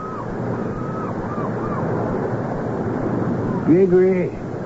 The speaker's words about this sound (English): And through the music of the languid hours, they hear the ocean.